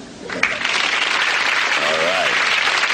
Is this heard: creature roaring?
no